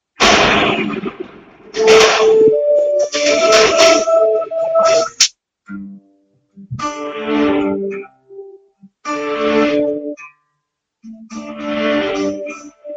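A worship song plays, a sung melody with sustained, held notes over a bright backing, coming in phrases separated by short pauses. It stays fairly loud throughout.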